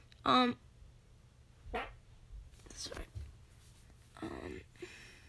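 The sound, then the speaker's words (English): A dog gives one sharp, loud bark at the very start, followed by several softer, muffled noises and faint background sounds. “Sorry, my dog just, whatever”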